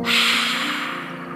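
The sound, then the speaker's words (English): A single forceful, breathy exhale through a wide-open mouth in a lion's breath breathing exercise, loud at the start and slowly fading over about a second, a voice imitating a lion's roar with a raspy, hissing breath. “Open your mouth really wide as you breathe out and make a lion's roar.”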